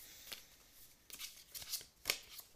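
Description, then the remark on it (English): Soft riffling of a deck of tarot cards being shuffled, with several quick papery bursts at an irregular pace and no talking. “So I'm just going to shuffle and you just tell me when to stop.”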